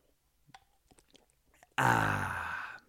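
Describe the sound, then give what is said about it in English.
Someone takes a few quiet sips of hot water, soft slurps and swallows, then lets out a loud, drawn-out throaty exhale lasting about a second. “So let me take a sip of my hot breath water.”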